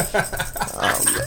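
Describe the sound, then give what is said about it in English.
Jingle bells and sleigh bells shaking at Christmas in a steady, busy jangle, bright and metallic with a shimmering high ring that continues unbroken for over a second at a moderate loudness. “We got bells. We got jingle bells.”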